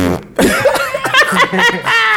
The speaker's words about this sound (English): It's a fart.